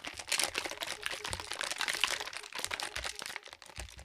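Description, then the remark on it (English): A cocktail shaker holding a red lemonade and lemon juice cocktail being shaken hard, a steady, bright rattle of ice clattering inside for about four seconds with quick rhythmic bursts and no voices. “Then once that is nice and shaken up, pour into a nice tall glass.”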